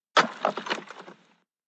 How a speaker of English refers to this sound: And then as she entered the study, she tripped and fell onto the floor.